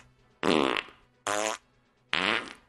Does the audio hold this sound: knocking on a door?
no